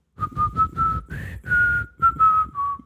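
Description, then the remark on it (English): A person whistles a pop song melody, a bright tune of short and held notes in quick phrases, with a low rumble of background noise underneath. “I mean, I was at work and this dude was whistling one of his songs.”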